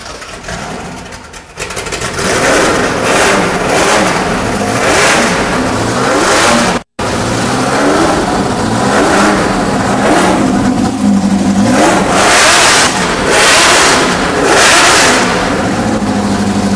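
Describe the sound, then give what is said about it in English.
The V8 engine of the oldest Ford GT40 in existence, a small block fitted with downdraft Weber carburetors, revs hard in repeated loud surges, climbing and dropping in pitch with a raw, throaty exhaust roar, a brief cut in the middle before the blipping resumes. “Fire up the GT40.”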